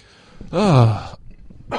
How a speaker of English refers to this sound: Got a cough. He's got a cough. Sorry. I'm choking to death.